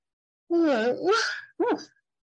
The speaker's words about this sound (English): I'm yawning at the beginning of the episode. That's bad. It usually happens at the end.